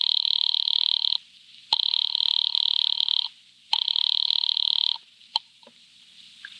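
A telephone line rings as a call is placed to an office, three long, steady buzzing bursts separated by short pauses, clear with no one speaking, followed by a couple of faint clicks.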